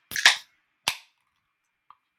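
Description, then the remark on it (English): Cans of Trail Candy Double IPA, brewed with Mosaic, Rakow and Simcoe hops, cracked open: a sharp, hissing pop with a short fizzy tail, followed a moment later by a second crisp crack, then a faint tiny click. No one speaks. “Are you ready to crack?”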